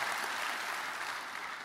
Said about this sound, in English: Well, all righty, praise the Lord. Let's give God a great clap offering. Isn't he worthy of all our praise this morning?